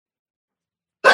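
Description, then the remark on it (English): A single sharp sneeze bursts out abruptly after a stretch of silence, loud, with a breathy, noisy texture that cuts off quickly. “Bless you. Excuse me.”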